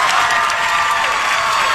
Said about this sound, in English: there is a special guest that arrived through a sliding door. He walked out and the audience started screaming. It was Steve Carell.